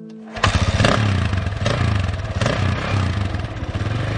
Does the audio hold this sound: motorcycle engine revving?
yes